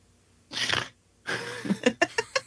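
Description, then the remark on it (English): A person attempts didgeridoo-style circular breathing with the mouth: a harsh breathy rush, a short pause, then a buzzy, sputtering stretch that breaks into several quick pulsing bursts. “That was gross sound. That was my attempt. That was your didgeridon't.”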